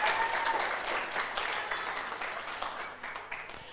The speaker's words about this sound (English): Can we get a quick round of applause for Simon?